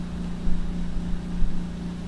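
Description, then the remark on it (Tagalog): An air conditioner running: a steady, droning mechanical hum with a low tonal buzz, continuous and unchanging throughout with no talking. “Naiingayan na ba kayo sa aircon ko?”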